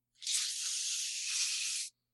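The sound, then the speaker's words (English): A steady, breathy hiss of air escaping from a balloon runs unbroken for nearly two seconds, bright and fairly loud, then cuts off abruptly. No voices are heard. “Well, somebody's leaking a fucking balloon or something.”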